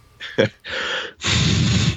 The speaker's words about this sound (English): Yeah, I will rescind my earlier sniff into the mic